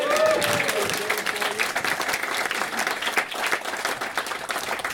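A crowd breaks into steady applause, dense overlapping claps sustained at an even level for several seconds, with a few voices faintly mixed in at the start.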